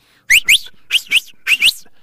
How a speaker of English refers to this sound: You can whistle with your lip. You can whistle with two fingers. You can whistle with one finger. I can do it too well.